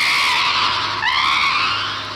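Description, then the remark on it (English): A winged monster as big as a baseball field screams out of the sky: a shrill, piercing scream, loud and unbroken for about two seconds, with a harsh, wavering pitch that lurches upward midway through. No one speaks. “Just as the hardy security man shouted his warning, a horrible winged monster screamed out of the sky.”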